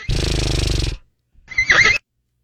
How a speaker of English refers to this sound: That's kind of a weird sound effect. That is a weird. It sort of like cuts it off. It's like, all right, you're done. Don't even let the horse get through his whole name. Yeah. Half a whinny for you.